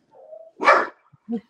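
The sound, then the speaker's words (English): A dog on a couch gives a brief whine, then one loud, sharp bark, followed a moment later by a shorter, softer bark, with no talking. “The dog was behind me on the couch.”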